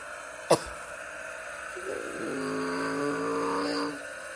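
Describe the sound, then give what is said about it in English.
A sharp knock is followed by a stock car engine on the last lap of a race, heard from an in-car camera, its droning whine swelling in and climbing in pitch, then holding steady and loud before easing off. No one speaks. “Now we're going to ride along in the in-car cam. 4 ahead of Kevin Harvick, it looks like.”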